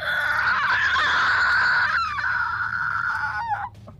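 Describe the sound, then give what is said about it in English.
A loud, harsh creature screech holds for more than three seconds, shrill and grating with a rough, raspy edge, then wavers and drops in pitch before cutting off. “Pass as this creature lets off a horrific screech.”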